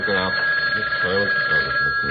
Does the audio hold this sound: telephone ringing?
yes